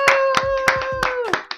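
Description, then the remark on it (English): A short burst of hand clapping, about seven or eight quick, loud claps in an uneven rhythm, with a sustained whoop or cheer running underneath. “Clap it up.”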